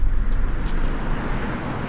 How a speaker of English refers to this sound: Do you even hear the freeway noise? No, not very much. We rarely hear the cars driving when we're all the way here.